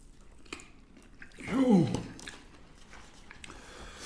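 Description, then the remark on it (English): Someone chews chicken wings: a short, wet, crunchy burst of biting in the middle, with a brief low voiced murmur over it, and faint smacking clicks before and after. “Yo, the way I eat wings... Is I split the bone like this.”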